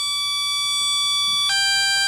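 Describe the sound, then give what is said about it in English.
A video game death sound: a loud, harsh electronic buzz holds one steady pitch, then abruptly drops to a lower buzzing tone for its final half second. No one speaks. “All right, let's see what it sounds like when I die.”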